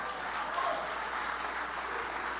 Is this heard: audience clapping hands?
yes